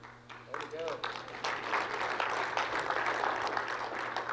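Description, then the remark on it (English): An audience at a sermon breaks into applause that swells within the first half second and holds steady as a dense, continuous patter of many hands, with faint crowd murmur mixed in. “All right, I love clap starters.”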